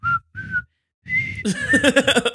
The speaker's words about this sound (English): I'm gonna let you know anyways, because here's what I was gonna whistle.